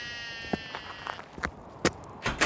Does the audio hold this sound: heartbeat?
no